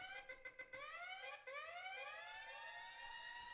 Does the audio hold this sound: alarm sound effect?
yes